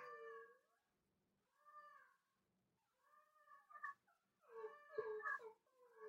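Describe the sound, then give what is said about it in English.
A dog named Bingo howls in a series of drawn-out, wavering cries while Kobe cries from the other room, separated by short pauses, growing louder and more overlapping toward the end, with no talking. “Oh, so Kobe is crying from the other room and Bingo is howling.”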